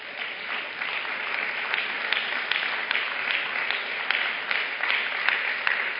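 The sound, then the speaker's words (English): A church audience applauding together as a clap offering to God, a dense, steady wash of many hands clapping at once, loud and sustained throughout without any speech. “Let's give a clap offering for God.”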